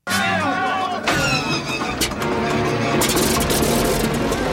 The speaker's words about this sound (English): So that whirring. The pff, pff, like that sound effect, that sounded like an engine failing, or like even on like a pod racer. Mm-hmm. Like when Anakin's pod thing revs up. Yeah. Well, like the engine failed and he's trying to get it to rev back up.